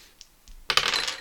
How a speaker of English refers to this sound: Category seven. And I'm rolling two dice.